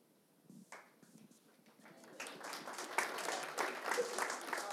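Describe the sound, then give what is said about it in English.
An audience breaks into applause, starting with a few scattered claps and swelling into steady, dense clapping that grows louder over several seconds. “That must mean you did really well. They're clapping.”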